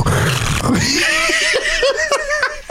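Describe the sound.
A person imitates a pig's snoring snort with a loud, rough, nasal grunt, then a run of quick, pulsing snorts and squeals that shift in pitch. Snicker-like laughter mixes in.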